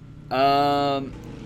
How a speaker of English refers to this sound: Shut up, motorcycles.